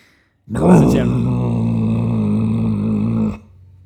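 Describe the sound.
A voice imitates a car engine with a low, buzzing rumble that starts with a loud rev and then holds steady and strong for nearly three seconds before cutting off abruptly.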